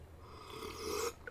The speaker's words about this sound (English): Sorry, I couldn't hear you over my delicious slurping.